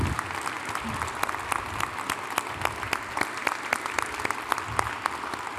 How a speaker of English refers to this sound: Let's give another big round of applause for all of our recipients tonight.